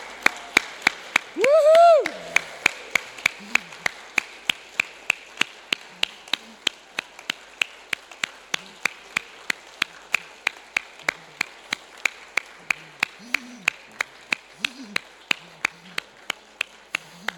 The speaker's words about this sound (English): When they walk into this room, I would like you to give them a standing ovation, to turn around and clap them in.